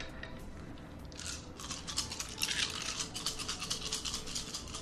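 Ten dice are rolled for damage in a game, rattling and clattering together in a dense, continuous burst of sharp plastic clicks that grows louder partway through and keeps going to the end, with no voices.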